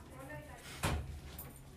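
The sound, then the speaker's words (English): A single solid, fairly loud thud of a door being shut, landing mid-clip over a steady background hum. “I'll shut this door a little bit.”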